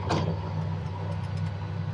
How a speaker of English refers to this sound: Well, the engine braking is fabulous in these cars, and you really relied on it back in the day.